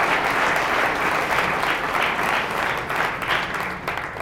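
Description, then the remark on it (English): A crowd applauds steadily to welcome a speaker, dense overlapping claps forming a loud, sustained wash of noise that holds its level for several seconds before easing slightly at the end. “love for you to welcome Jim with a warm round of applause.”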